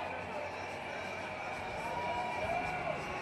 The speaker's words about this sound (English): On the way, we took a little detour through the Manchester Pride celebration. A sea of people cheering, celebrating, waving rainbow flags, happily declaring their identity.